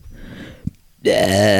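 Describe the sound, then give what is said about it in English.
After a second of near silence, a loud, drawn-out burp erupts, deep and croaky, rumbling on without a break until the end. “You got a lot of burp humor.”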